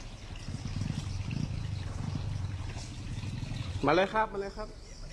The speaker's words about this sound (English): It's raining right now. Rainy season, it rains constantly.